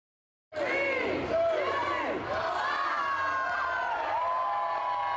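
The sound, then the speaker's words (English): A large New Year crowd in Auckland, New Zealand, erupts into loud, sustained cheering as 2024 begins with fireworks at the Sky Tower, after a brief silence, many voices yelling and whooping together in a continuous roar that holds steady to the end. “It's 2024 already in New Zealand. Fireworks there at the Sky Tower lighting up Auckland.”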